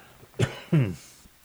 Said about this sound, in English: Oh, by the way, before I go on with my story, I've had people ask, what are you coughing? Well, what's coughing? You know, why are you coughing? I think it's what's left over from my COVID, you know?